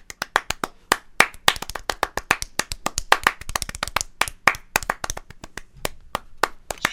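Sharp hand claps ring out in a quick, rhythmic pattern, a McDonald's clap, with some claps overlapping as if from more than one person, fairly loud with no talking.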